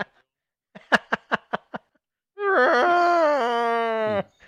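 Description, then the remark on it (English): A human voice imitates a Godzilla roar: five quick grunting bursts, then a long, loud, wailing cry held for nearly two seconds with stepped pitch shifts before cutting off. “Godzilla roar.”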